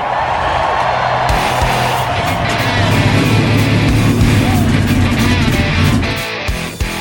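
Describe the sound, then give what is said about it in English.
Several loud race car engines roar to life and rev together in a dense, sustained rumble, with rising and falling engine tones before the noise briefly drops near the end. “Cars, start your engines!”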